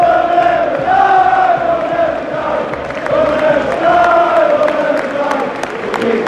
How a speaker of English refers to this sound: and you can hear those of the United fans, most of them who stayed, to be fair, singing defiantly.